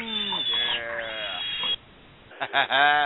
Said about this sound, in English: But the one thing that I can't forget, you know it, you love it, it is now time for suspense, the pig of the week. Oh, squeal, little piggy, squeal, baby.